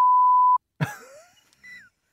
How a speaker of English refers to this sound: You are the one saying the things that need beeping.